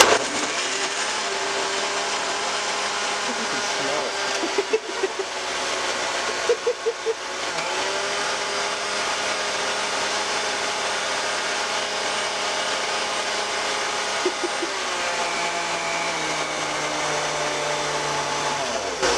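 A kitchen blender whirs steadily at close range for the whole stretch, a loud continuous motor drone with a few brief rattling clicks and small shifts in pitch as the contents churn.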